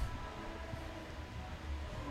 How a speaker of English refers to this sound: A little bit of train in the bar.